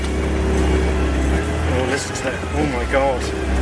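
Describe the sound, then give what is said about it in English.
The engine of a 1973 MGB GT sports car rumbles at idle, a loud, steady low growl running through the whole clip, with people talking over it in the second half. “Listen to that. Oh my god. I'm feeling a rumble in my tummy.”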